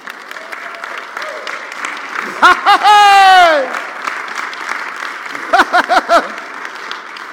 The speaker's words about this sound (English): The Message says, all together now, applause for God.